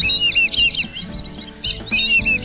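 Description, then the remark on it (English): Shrill, wheezy whistling calls of a black-bellied whistling duck (Dendrocygna autumnalis) repeat in quick overlapping bursts, fairly loud, with a brief lull midway and a soft low rumble beneath. “The black-bellied whistling duck.”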